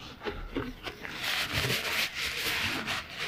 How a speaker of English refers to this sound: The crush of my super soft tissue from the pocket of my hoodie that encapsulates my body.